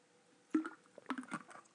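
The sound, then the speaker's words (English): A quiet sip of water: a couple of short wet slurping and swallowing sounds in quick succession, heard alone with no talking. “Hold on, I had to get a drink of water.”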